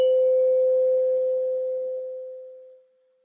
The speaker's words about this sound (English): Stay with sound as long as you can. Just the sound of the bell. Other sounds will come around. Thoughts will come. Just come back to the sound.